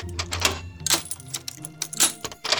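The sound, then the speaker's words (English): Metallic clicks and rattling scrapes of a key turning in the lock of a door in the floor, with several sharp snaps and jangling bursts over about three seconds, no voices. “The door in the floor is unlocked!”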